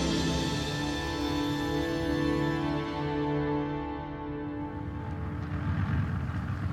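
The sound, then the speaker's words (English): The engines of an airplane carrying Adolf Hitler drone steadily as it taxis to a halt, a loud, tonal hum with layered harmonics whose higher whine fades partway through, leaving a rougher low rumble as it slows. “As the plane taxis to a halt, its passenger, Adolf Hitler, is in a deep, dark funk.”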